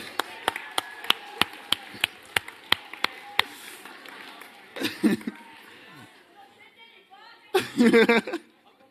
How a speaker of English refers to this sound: Give him a clap.